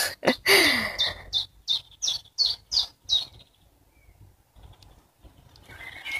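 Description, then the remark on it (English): Birds chirping outdoors during a break in the rain, a quick run of sharp, evenly spaced calls repeating for a few seconds before fading into quieter background chatter. “And the birds have gone wild today. You can probably hear them chirping away.”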